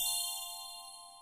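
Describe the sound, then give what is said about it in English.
A bright, bell-like chime introducing a K-pop corner segment of a show rings once, sustained tones that slowly fade out over about a second, with no voices over it. “And that's where the chime comes in.”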